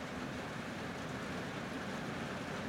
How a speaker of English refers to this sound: I'm going to be quiet for a minute and see if you can hear this rain.